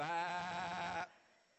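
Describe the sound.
An audience imitates a sheep with one loud, sustained, wavering bleat lasting about a second, then it cuts off abruptly into quiet.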